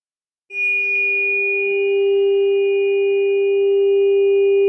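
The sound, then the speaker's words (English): A steady ringing tone sounds after a brief moment of silence and sustains loud and unbroken to the end, with faint higher overtones shimmering above it and no voices. “That's a 396.”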